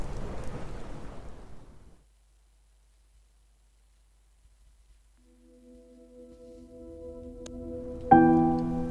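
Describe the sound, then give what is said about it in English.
A burst of heavy rain with a thunder rumble fades out within two seconds, leaving near silence before a sustained tonal drone gradually swells and sharpens near the end. “leaving the fragments of the family to listen to the storm and feel the heat from the fireplace.”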